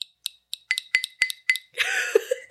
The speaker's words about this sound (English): Love that I tap this glass with a Claire's lip gloss. That's what I'm working with. Tinkle, tinkle, tinkle.